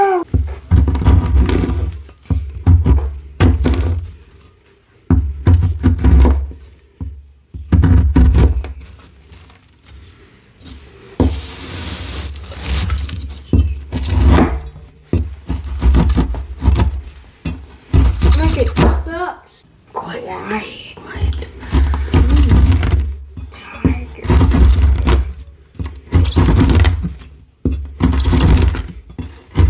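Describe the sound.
Loud glassy crushing and chopping done with kids, with repeated crunchy impacts and crackling bursts coming in uneven clusters, separated by short pauses, with voices audible at times.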